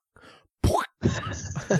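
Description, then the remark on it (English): A voice imitates a film's punch sound effect, the one sound used for every punch in its fights, with a sharp, explosive mouth burst, then a longer, breathy vocal whoosh, loud after a brief spoken lead-in. “there wasn't much variety in the punch. So essentially every punch sounded the exact same. Like this one whack, they thought, right, we've got it.”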